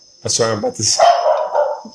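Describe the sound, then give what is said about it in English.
A dog barks loudly, two or three quick harsh barks in a row, followed by a rougher, noisy stretch of sound. “I'm about to spray this dog with some freaking... hand sanitizer.”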